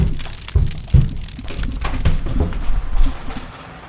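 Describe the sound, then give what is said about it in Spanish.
Irregular, heavy footsteps thud across a roof, several dull low knocks with faint creaks and crackles between them, with no voices. “Se oyen extraños pasos en el techo.”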